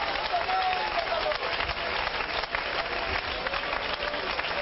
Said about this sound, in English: Come on, let's clap our hands and love the Lord. I feel the Holy Ghost here tonight.